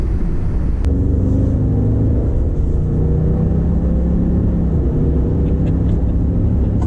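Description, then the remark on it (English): A tuned EcoBoost pickup truck's engine pulls hard under an average squeeze of the throttle, reaching 60, a loud, steady low rumble with rising harmonic tones as it accelerates, with no voices. “they're in various EcoBoost trucks, and he's sitting in the passenger seat, and the driver is experiencing the tune that he has now installed”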